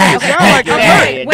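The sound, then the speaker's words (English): A voice practices a hunching sound with a run of loud, strained, wordless groans rising and falling in pitch, broken by brief pauses into about three pulses. “Before we go on any farther, before we say anything else, I'm going to need somebody to practice this hunching sound.”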